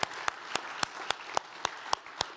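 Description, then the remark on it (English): An audience at a First Methodist Mansfield church service applauds the special needs ministry, a dense wash of clapping with a few sharper claps landing at a steady, quick beat. No voices rise above it. “So let's just give everyone another really just praising God for special needs ministry, and let's just applaud what God's doing, right?”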